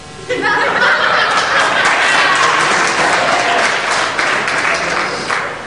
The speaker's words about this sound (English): I want to know how many Democrats are just clapping and how many Republicans.